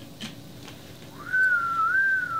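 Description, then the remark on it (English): A single sustained human whistle rises quickly and then holds a fairly steady, straight tone for about a second, clear over faint background noise. “Just a whistle, a straight whistle.”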